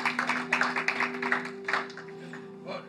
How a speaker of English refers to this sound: Okay, give a round of applause,